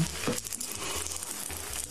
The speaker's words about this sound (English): He's trying to get up. You can hear the diaper tearing and the glue.